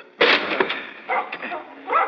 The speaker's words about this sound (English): I think we better force the door. Come on, Potters, help me. Yes, sir. We'll use this heavy chair. Steady now. One and two and...